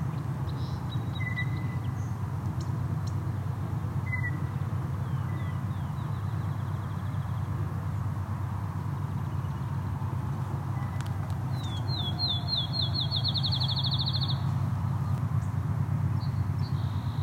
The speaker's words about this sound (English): A lot of field sparrows here, ticking at me. Field sparrow, very loud.